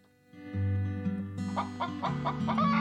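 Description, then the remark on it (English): A hen clucks in a quick run of about six short, throaty bursts, clear, over a low, steady background drone. “Cluck agreed.”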